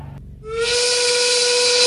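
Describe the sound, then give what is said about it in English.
A loud factory steam whistle at a quarry blasts in after a brief moment, holding one steady, shrill tone wrapped in a heavy rush of hissing steam that continues to the end. “And that's that factory whistle down at the quarry.”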